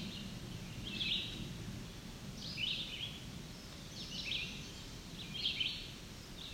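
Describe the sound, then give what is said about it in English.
A chestnut-sided warbler sings four short, bright phrases at steady intervals, fairly faint, over a constant low rumble of background noise. “I don't know if I've seen chestnut-sized warbler up here before, so might be new to me around for this area.”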